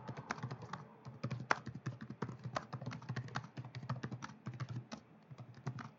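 Rapid, continuous clatter of keys on a computer keyboard as someone types notes, with irregular bursts of taps and no voices.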